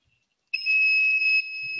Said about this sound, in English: Fire alarm! Oh, these buzzers started working.